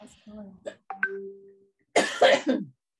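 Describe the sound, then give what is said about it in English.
A loud, harsh cough caused by a disability comes in a short cluster of rough hacking bursts, preceded by a few brief vocal sounds and a faint sustained tone. “Excuse my cough, it's part of my disability.”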